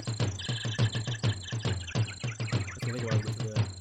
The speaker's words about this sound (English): Ooh, did we just go to the jungle? I guess Mario let out his captive monkey.